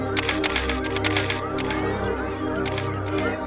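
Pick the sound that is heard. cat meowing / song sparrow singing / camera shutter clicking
camera shutter clicking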